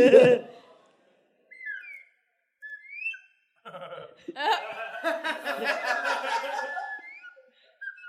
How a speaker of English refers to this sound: It's a slide whistle? Yes, it is. It's a slide whistle.